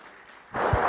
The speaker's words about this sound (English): And you can give him a round of applause.